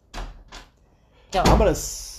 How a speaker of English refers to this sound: But just that she had to open the door 3 more times